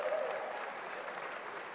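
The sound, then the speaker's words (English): A church audience breaks into a sustained round of applause for the graduates, a dense wash of many hands clapping at steady volume with no gaps, fading only slightly toward the end. “So give all of our graduates a big round of applause.”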